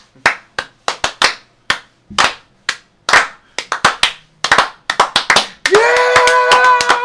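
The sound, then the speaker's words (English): Sharp single hand claps start slow and evenly spaced, then gradually quicken into a faster, denser clapping rhythm before a loud sustained cheer takes over at the end. “Can we get like an 80s slow clap from the movies?”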